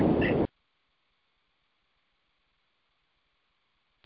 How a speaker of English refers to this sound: Too much static there.